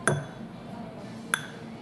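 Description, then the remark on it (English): Two bright, ringing pings from a fingertip flicking a wine glass, the first near the start and the second just over a second later, each with a short shimmering tone over a faint room hum. “I am actually flicking the glass.”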